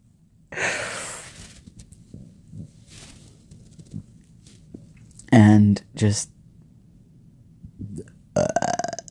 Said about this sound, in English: And just burp, apparently.